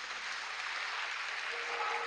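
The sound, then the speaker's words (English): An audience claps together in a dense, steady wash of applause, many hands blending into a continuous bright crackle that holds at an even level for about two seconds, with no voices. “If you clap, clap.”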